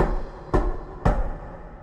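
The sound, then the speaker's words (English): Two heavy, booming knocks of a heavy brass knocker against the massive stone door at the gates of the mountain city of Grimgolir in a Dungeons & Dragons game, struck about half a second apart, each a sharp thud with a resonant tail over a low, steady rumble. “Glancing amongst your comrades from under your soaked cloak, you reach out for the heavy brass knocker and hammer the massive stone door three times.”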